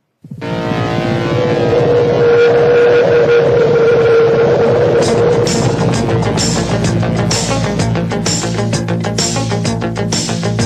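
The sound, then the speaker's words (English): The loud intro theme of the 1980s TV series Airwolf begins with a droning, engine-like synth swell, then settles into steady rhythmic percussion and layered synth tones, with no voices. “So in honor of Airwolf, here's the intro.”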